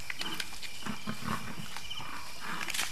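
A buffalo bellows in distress during a lion attack at night, loud, rough calls amid a chaotic, noisy struggle with growling, continuous over a few seconds.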